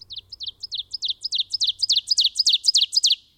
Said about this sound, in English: Oven bird.